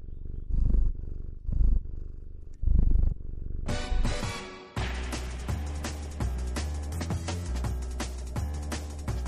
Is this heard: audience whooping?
no